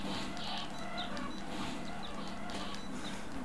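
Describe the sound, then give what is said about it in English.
Video game chickens cluck in short, repeated bursts as the player slaughters them, over a steady, noisy background hum, fairly faint and continuous, with no one talking. “Just slaughtering chickens. I am slaughtering chickens.”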